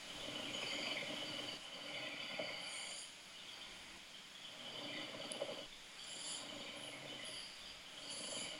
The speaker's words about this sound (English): You've started, you know how you did tennis snoring? Yeah. You've got a new one now. Oh, really? This is exciting. This is helicopter snoring.